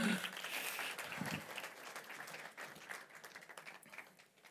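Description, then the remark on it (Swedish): Audience applause, a dense steady patter of many hands clapping at once, fairly loud and sustained before gradually thinning and fading toward the end. “En applåd!”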